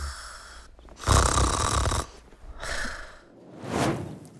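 A sleeping rhino snores loudly in slow succession: three deep, rasping breaths, the first longest and heaviest, followed by two shorter, breathy snorts, with no talking.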